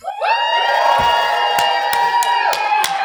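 A live crowd at C2E2 erupts in loud, sustained yelling and cheering, with high whoops and scattered sharp shouts cutting through the dense roar for a few seconds.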